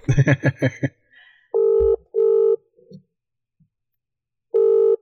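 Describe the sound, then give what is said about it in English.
An outgoing phone call's ringing tone: three steady electronic tone bursts, two close together and one after a pause, fairly loud and clear, following a brief stretch of voice at the start. “No, I'm ringing again.”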